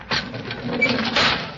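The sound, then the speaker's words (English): A steady, breathy hiss of air being pumped into a chamber to pressurize it, sustained and fairly loud for the whole moment with slight surges, carrying a faint mechanical whir beneath it. No one speaks. “What's that hissing sound? That means that air is being pumped into this chamber.”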